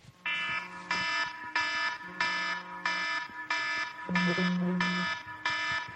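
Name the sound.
alarm going off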